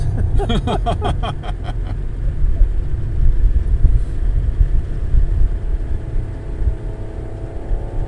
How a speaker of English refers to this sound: Now we're near, that is a loud, some kind of car up there. Right. I don't know if that's picked up on the microphone, but there's some like muscle car or something that's probably half a mile away that's making crazy noises.